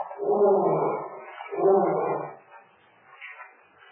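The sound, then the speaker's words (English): A lion roars twice in quick succession, each call loud, deep and drawn out, then trails off into fainter, rough grunts. No one speaks. “Lion? Yes. Lion here?”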